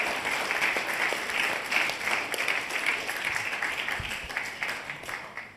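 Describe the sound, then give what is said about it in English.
Sustained applause from an audience, a dense wash of many hands clapping steadily at a fairly even level throughout, with no clear talking over it. “Come on, give them a good clap, Papa.”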